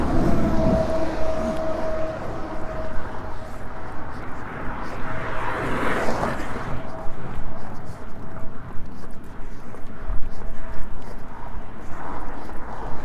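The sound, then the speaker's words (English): Continuous traffic noise, a steady low rumble with a vehicle swelling loudly past around the middle, plus a faint droning tone early on that fades away. “Noisy traffic interlude.”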